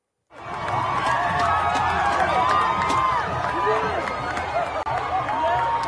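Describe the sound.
A large crowd in Bristol cheers and shouts as the statue of slave trader Edward Colston is torn down, a dense wall of overlapping voices with rising yells poking through, staying loud and steady for several seconds after a brief silent start.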